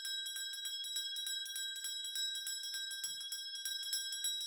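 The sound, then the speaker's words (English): A bright bell rings continuously for last call in rapid, steady strokes, its clear metallic tones sustained throughout with no voices present. “I feel like that bell was so long.”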